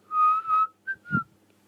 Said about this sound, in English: I'm trying to whistle then, wasn't I? Yeah, I was.